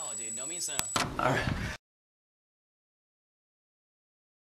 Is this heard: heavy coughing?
no